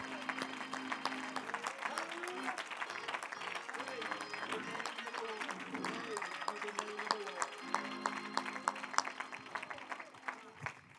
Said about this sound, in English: Lay your Bibles down. Let's clap our hands unto the Lord one more time.